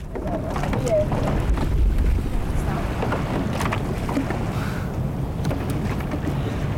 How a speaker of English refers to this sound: The glassy waters of the canal are really the only protected spot to train. The hypnotic sounds on the gunwale helps to focus the team to get into the rhythm.